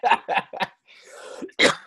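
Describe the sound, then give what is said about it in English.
A fit of coughing: three quick harsh coughs, a wheezy breath in, then one final loud cough, with no talking. “I wish there's no cough button there.”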